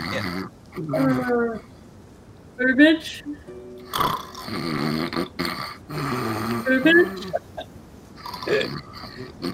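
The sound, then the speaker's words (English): A voice imitates the character Berber snoring in the corner: repeated rough, nasal breaths snorting in and out in an uneven rhythm, with some voiced grunts mixed in. “Yeah, he's snoring in the corner.”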